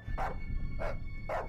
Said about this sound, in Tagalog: Nang bigla na lang daw, walang tigil na nagkakahol ang aso nila.